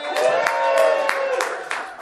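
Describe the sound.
A crowd claps and cheers in a steady wash of noise, with sharper bursts every third of a second or so and sustained voices whooping over the applause.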